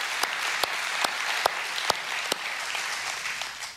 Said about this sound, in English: And I think it's entirely proper that we give them a round of applause this morning.